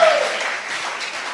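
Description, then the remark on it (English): A church audience claps for the Lord together in a dense, continuous wash of hand claps that holds a steady, fairly loud level throughout, with a brief tonal sound at the very start. “Give the Lord a clap of in the church.”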